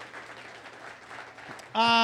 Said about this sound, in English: Well, thank you guys for coming down. Give yourselves a round of applause, please.